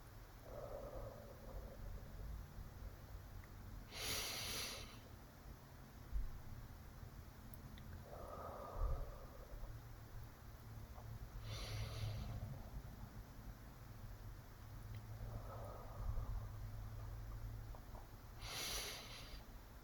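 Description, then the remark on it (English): Slow, steady breathing during a breathing exercise while tracing one hand with the other: hissy inhales through the nose alternate with softer, breathy exhales through the mouth, about three full cycles at an even pace over a low background hum. “You might hear me breathing because I'm gonna breathe in through my nose and exhale through my mouth”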